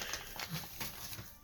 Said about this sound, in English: Child. The child is running around and playing in paper.